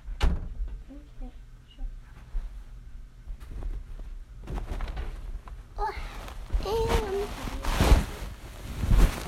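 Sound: door being closed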